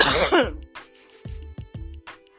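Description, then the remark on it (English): A harsh throat-clearing burst opens, followed by a few softer, spaced throaty rasps and a faint breath, all heard alone with no talking. “You know, I'm about to cough.”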